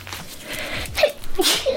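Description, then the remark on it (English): A sharp sneeze into a mask, over a patient, erupts after a breathy intake, followed by a second quick burst of air, loud and sudden against an otherwise quiet background with no talking. “Sneeze in my mask.”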